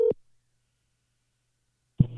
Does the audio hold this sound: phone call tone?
yes